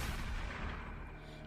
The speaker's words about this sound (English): The man loomed over her, but suddenly there was a flash of light and the sound of a gunshot.